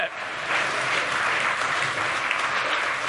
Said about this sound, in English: Yeah, if you're gonna clap, you just go all in. Not a golf clap, you just get it going. That's awesome.